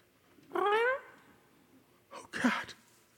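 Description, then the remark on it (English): A returning cat meows once, a clear rising cry, then after a short pause gives a second, rougher and noisier yowl. No one speaks. “Cat, you're back.”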